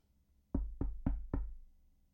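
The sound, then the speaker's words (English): Four solid knocks on a wooden pantry door, made by Jack from the pantry area, evenly spaced in a quick steady rhythm, resonant, with a short hollow decay after the last one and no voices. “And so we go to the scene of Jack in the pantry area and knocking.”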